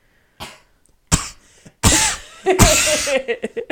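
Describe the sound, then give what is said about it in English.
A person fakes a series of loud, exaggerated coughs imitating YouTuber Ethan Klein's cough, starting with a few short separate hacks and building into a longer, raspy coughing fit, with no other voices present. “He does an Ethan Klein cough.”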